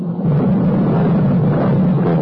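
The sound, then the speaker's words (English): Deep, continuous rumbling of storm thunder, loud and steady for the whole stretch with a dense low roar and no distinct claps. No one speaks. “I love the storm that crossed the firmament.”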